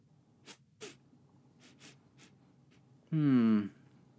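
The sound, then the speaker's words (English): A few soft, crisp rustles of paper as a letter is opened, spaced out over a couple of seconds, then a sudden loud vocal burst like a sneeze or snort. “Why not open the letter and find out?”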